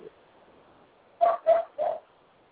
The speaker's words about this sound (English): Oh, who got a dog? Who got a dog?